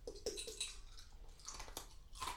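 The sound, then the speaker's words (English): Wet crunchy chewing with the mouth open, a quick run of smacking, crackling bites repeating irregularly for a couple of seconds, with no voices. “Do you have to fucking crunch with your mouth open?”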